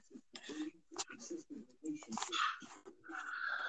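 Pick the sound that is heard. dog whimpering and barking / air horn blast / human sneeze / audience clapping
dog whimpering and barking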